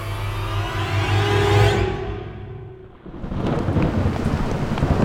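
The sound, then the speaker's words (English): A deep rumble of thunder rolls and fades, then a steady, dense hiss of heavy rain takes over, constant, with no voices. “For the record, walking in the rain is my worst nightmare.”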